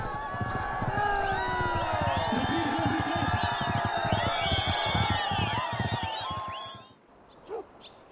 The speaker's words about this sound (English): And Tashkirgan is released from its winter purdah. The Tajiks traditionally celebrate this auspicious moment with horse racing.